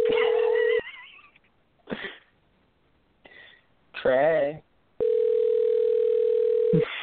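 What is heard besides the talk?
outgoing phone call ringing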